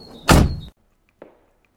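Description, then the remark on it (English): A car door in a garage opens and shuts as a woman leans across to the passenger seat: a loud, heavy thunk lasting under half a second, then a brief faint click of the latch about half a second later. There's no talking. “Remembering her shoulder bag, she opened up the car door and leant across to the passenger seat where it lay”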